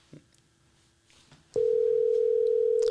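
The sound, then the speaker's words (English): A steady, loud telephone dial tone of an outgoing call starts abruptly midway and holds unbroken to the end, following a stretch of quiet low rustling and a few faint clicks. “It's going to be my number that pops up.”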